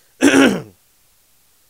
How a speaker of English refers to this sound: Even to clear my throat. All right? Let me clear my throat. Can I do that? Let me clear my throat.